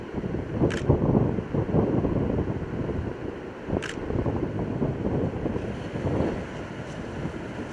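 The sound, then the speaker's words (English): Strong, gusty wind roars steadily across the microphone at the beach, suddenly picking up by 5 to 10 miles an hour, with sharper buffeting bursts every few seconds and the wash of surf underneath. No one speaks. “Notice the wind just picked up 5 to 10 miles an hour just all of a sudden, and the waves are already showing that.”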